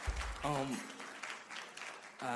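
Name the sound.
audience clapping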